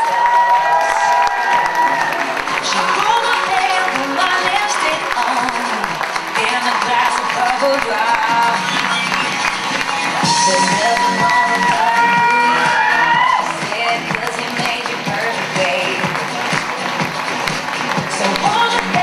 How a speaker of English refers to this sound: We have a final walk. One big round of applause as everyone comes out here and does one big final grace for you.